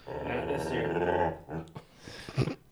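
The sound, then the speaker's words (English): A dog growls while a man has his fingers in its mouth, wrenching its jaws open: a long, rough, rumbling growl that rises and wavers, then breaks into a few shorter choppy grumbles and huffs. “has his fingers full on in his dog's mouth, wrenching its jaws open.”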